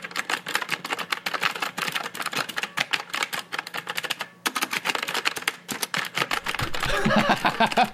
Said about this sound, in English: When you say it sounds like a typewriter, I mean, it clacks like an old, like Lou Grant kind of typewriter